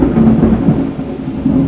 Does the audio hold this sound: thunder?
yes